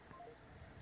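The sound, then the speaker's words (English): Three quick, faint telephone keypad dialing beeps follow one another in rapid succession as a phone call is placed, then fade into a low background hiss with no voices. “I'm going to try calling up message my phone.”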